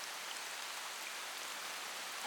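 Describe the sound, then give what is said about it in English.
Heavy rain pours down in a steady, dense hiss, an even wash of drops with no pauses or other sounds. No one speaks. “We stood in silence, puffing away, watching the rain pour down.”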